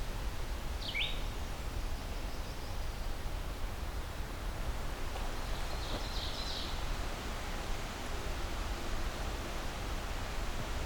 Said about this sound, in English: A fairly quiet solo red-eyed vireo.